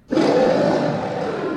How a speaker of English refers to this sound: If you didn't hear the cat, maybe you heard the bear.